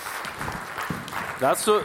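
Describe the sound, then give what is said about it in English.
An audience claps steadily in a dense, moderately loud patter, with a few voices whooping or calling out over the applause near the end. “We got to clap for that.”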